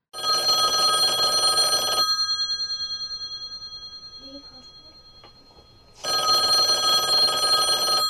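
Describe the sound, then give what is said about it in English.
A telephone rings twice, each loud, bright ring lasting about two seconds, with a quiet pause of roughly four seconds between them, as a phone call is placed to Democratic State Senator Gustavo Rivera. No one speaks. “got on the phone with Democratic State Senator Gustavo Rivera.”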